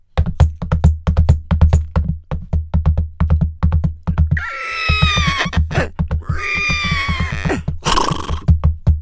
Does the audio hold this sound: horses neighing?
yes